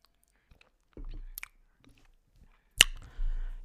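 Mouth sounds of someone sipping a drink: quiet wet slurps and swallows, with a couple of sharp lip-and-cup clicks, no talking.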